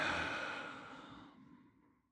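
A deep breath in and out: a deep, breathy exhale, fairly loud at first, then trailing off softly over about two seconds. A single long sigh-like breath out, with no talking.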